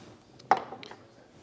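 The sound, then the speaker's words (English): Glasses and a bottle being handled as a couple of glasses are fetched: one sharp, ringing glassy clink followed by a softer knock a moment later, with faint shuffling before and after and no talking. “I'm just going to grab a couple of glasses.”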